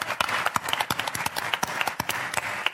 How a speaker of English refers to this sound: And everybody else, give them a round of applause. Thank you for supporting Dumpty Dum.